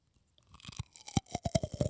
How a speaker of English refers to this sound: I'm going to ASMR eat one of these cashew clusters.